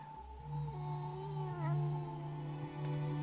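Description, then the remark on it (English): A cat lets out a long, drawn-out meow that wavers in pitch for several seconds, fairly loud, with no talking. “Stop looking at me, you fucking cat!”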